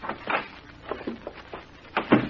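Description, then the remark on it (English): A door is handled, with a series of short knocks and clicks as it opens and shuts, ending in a firmer thud near the end. “How do you lock this door?”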